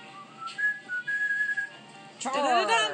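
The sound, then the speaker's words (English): A person whistles a short, bright cavalry charge tune, a few quick rising notes, before a voice cuts in and starts talking. “He can whistle the little cavalry thing, the, hold on.”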